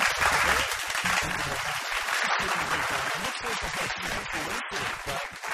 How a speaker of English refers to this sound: we've got some applause for the tank.